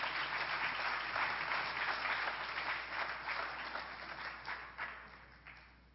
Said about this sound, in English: At this time, I want to call up our first group. It's actually going to be from Kenya, and they will be doing a song and dance. And so could you give them a round of applause as they make their way up front?